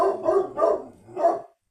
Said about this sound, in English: We got some dogs barking in the background.